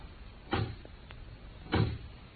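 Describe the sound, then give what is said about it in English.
A door with a glass pane opens as someone comes in, with two soft, muffled thumps about a second apart and a faint latch click between them, otherwise quiet. “There's someone outside the door. I can see his shadow on the glass.”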